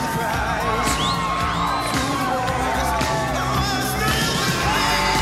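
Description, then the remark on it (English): A loud, dense crowd roars and cheers without pause, with whoops and yells rising above the wash of noise and sharp bangs scattered through it, like an audience at a rock concert. “A lot of energy from the crowd.”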